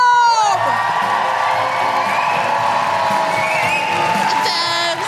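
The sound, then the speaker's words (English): A loud crowd at a Guilty Feminist live show in Bath Spa cheers, whoops, stamps and applauds continuously, with high rising woo-hoo calls cutting through a dense wash of clapping and shouting that holds steady for several seconds. “Please put your hands together, stamp your feet, and make general Guilty Feminist woo-hooing noises, smashing the patriarchy as you go”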